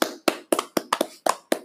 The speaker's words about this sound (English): Round of applause.